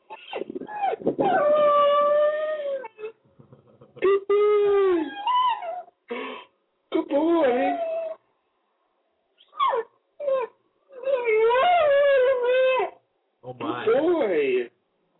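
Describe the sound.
A dog howls and whimpers in a series of wavering, high-pitched bursts separated by short pauses, with a person's voice briefly mixed in among the cries, saying good boy.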